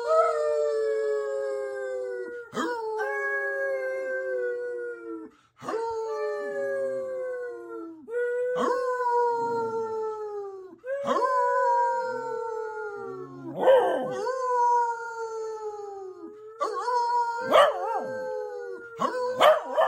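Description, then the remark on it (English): Several dogs howl together, long wavering overlapping howls rising and falling in waves with short breaks between, loud and sustained for the whole stretch. “That is not a howl. Yeah, we need the whole pack.”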